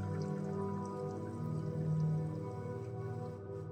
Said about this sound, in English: Oh, I'm realizing I'm drinking water when I should be talking.